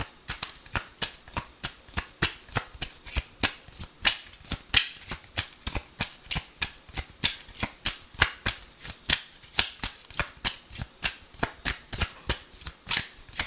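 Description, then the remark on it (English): Tarot cards are shuffled for a Pisces love reading in a steady run of crisp, papery snaps and flutters, roughly three per second, continuing for over ten seconds at a moderate level with no talking. “Two cards came out together.”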